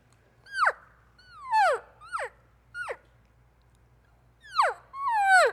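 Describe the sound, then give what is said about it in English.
Six whiny, descending elk cow calls, made by a hunter with a cow call to call an elk over, each a short nasal mew sliding from high to low pitch, with uneven pauses between them over a faint low hum. “So as soon as I give him that, I now have the cow call him over.”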